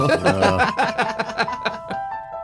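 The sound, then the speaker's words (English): Tubular bells play a short melodic run of quick struck notes, each ringing with bright sustained overtones over a low droning tone that drops away midway, before the chimes fade. “Little tubular bells to set the mood.”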